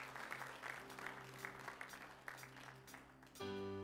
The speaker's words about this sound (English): Give these guys a hand clap.